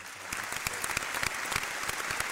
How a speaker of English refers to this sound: Shout out to Envy, man. Yeah. Round of applause, Envy.